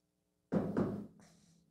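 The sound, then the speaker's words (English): Two quick knocks, made to punctuate a knock-knock joke, land in succession on a hard surface, each with a full, low thud and a lingering tail, followed by a faint higher rattle as the sound fades out. “Knock jokes with a knock.”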